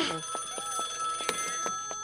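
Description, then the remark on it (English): A telephone rings steadily, a sustained bright tone broken by quick regular clicks, with no one talking over it. “Your phone.”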